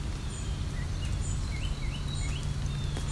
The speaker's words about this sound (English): Some song sparrows.